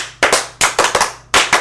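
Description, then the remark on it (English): Loud, sharp hand claps arrive in three uneven clusters, about eight or nine claps in all, with brief pauses between groups and no voices or cheering audible. “Can we cheer it or something?”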